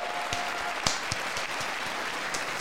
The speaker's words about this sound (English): She's going to stand up and clap.